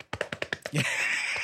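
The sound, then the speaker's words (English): A quick burst of about six soft, even pats of hands smacking against pockets while searching for keys, followed by a short breathy rushing noise. Moderately quiet, with no talking. “I mean, I'm smacking.”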